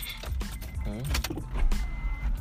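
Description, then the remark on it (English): Inside a car, a power window motor whirs steadily as the window rolls down, its mechanical hum layered over a low rumble of the vehicle. “Yeah, we can roll it down, actually.”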